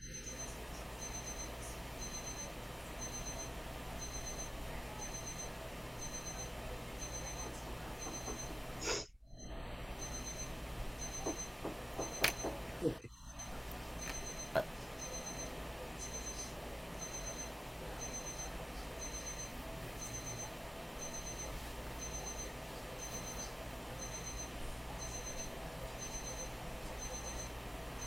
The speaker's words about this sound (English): Heard the timer go off like three times now? Four? I think four.